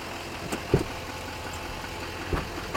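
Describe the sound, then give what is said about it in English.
A Chevy Duramax diesel truck engine idles with a steady, low, even rumble, broken by a few brief knocks or clicks. No one speaks. “It purrs like a kitten. It does purr like a kitten.”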